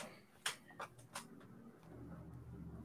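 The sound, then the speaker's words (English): A few sharp, evenly spaced clicks tick like a clock, the first three clearest and later ones fading, over a quiet low hum with no voices. “Is that like a, not an alarm clock, but a some kind of ticking noise?”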